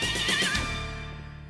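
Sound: horse neighing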